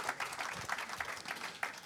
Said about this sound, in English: Yeah, you can applaud whenever you want. That's fine.